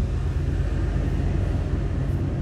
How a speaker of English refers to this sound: Okay, there's a train going by, so I'm going to add a flag.